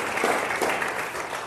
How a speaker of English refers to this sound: Give these guys a great big round of applause.